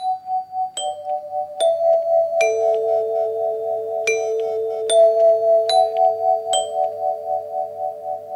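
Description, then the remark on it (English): A doorbell chime, recorded to open the first track of an LP, rings out a slow series of bright, sustained tones, each new strike layering over the fading ring of the last, clear with no talking. “The first track on the LP opens up with a doorbell chime, inviting the listener to answer the call.”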